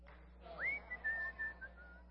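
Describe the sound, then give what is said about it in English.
A person whistles a short Christmas tune, a few sliding, held notes in a brief phrase, fairly soft, alone over a low steady background hum. “Guess I like to whistle.”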